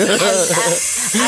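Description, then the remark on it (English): A voice imitates blowing air into a creature's mouth to blow her up like a balloon: a breathy, hissing whoosh with wavering voiced tones running through it, fairly loud for just over a second. “When Zako puts, when Zako puckers her lips, and just blows into her mouth, like, and just blows her up like a balloon.”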